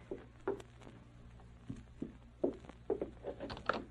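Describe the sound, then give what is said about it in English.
A man's slow, somewhat dragging footsteps as he comes toward the house, each soft thud with a slight scrape, spaced irregularly at a quiet, steady level with no voices. “he came toward the house, his step was slow, somewhat dragging.”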